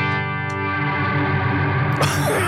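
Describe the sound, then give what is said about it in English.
A sustained electric guitar tone played through an Eventide reverb pedal, washed in heavy reverb and distortion, dense harmonics ringing steadily, with a brief swell or pick scrape near the end; loud, no voices. “Okay, so this is a reverb, I guess. I'm going to turn it on.”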